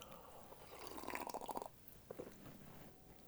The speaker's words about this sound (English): I'm on the SodaStream. Are you guys on the SodaStream? Everybody be SodaStreaming. Just sparking it up, man. Just sparking those bubbles up.